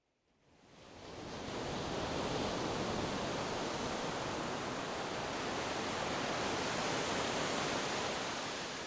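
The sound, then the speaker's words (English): Ocean surf at Shy Beach under a gray sky and gray sea, the shore covered with yellow seafoam, fades in over the first second, then settles into a steady, broad rushing roar that holds without distinct wave breaks. No voices are heard. “with tears flowing in anticipation, I finally stepped out onto the sands of Shy Beach.”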